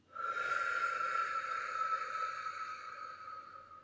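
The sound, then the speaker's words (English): A long, steady deep breath drawn in through the nose and out through the mouth, airy and breathy with a faint whistling tone, lasting several seconds and slowly fading, with no talking. “If you want to breathe with me, take a deep breath in through your nose and out through your mouth.”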